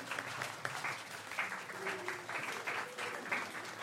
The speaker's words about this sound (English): So if you guys will start clapping in like a kind of calm manner.